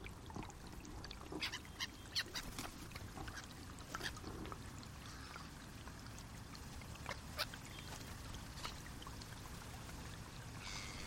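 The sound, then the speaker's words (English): Whooper swans, which come down to the loch from Iceland, call in scattered honking bursts over a steady wash of trickling, lapping water. The calls come at an uneven rhythm, some sharper and louder than others, with no talking. “About one third of the world's population of hooper swans come to the loch from around October onwards.”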